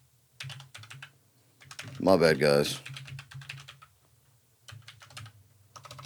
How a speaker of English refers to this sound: Dude, my typing skills are so bad. I should have done better, paid way better attention in typing class.